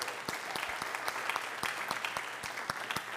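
An audience claps for a volunteer coming up on stage, in a steady round of applause, dense overlapping hand claps with sharper individual claps standing out at a quick, fairly even pace, moderately loud and sustained throughout.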